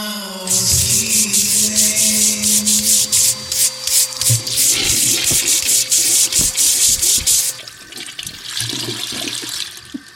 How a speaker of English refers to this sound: But first, let me scoot my chair up.